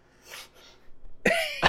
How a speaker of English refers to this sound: It's really bitter. It's making me cough a little bit.